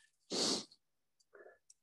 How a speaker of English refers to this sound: I hope you like deep breathing because there's a lot of it today.